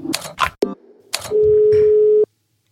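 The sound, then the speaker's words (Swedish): A few sharp clicks and taps, then a loud, steady telephone tone holds for about a second before cutting off abruptly, like a call connecting and ringing on the line, as a call is placed to a football referee. No voices. “Vi ringer direkt här nu.”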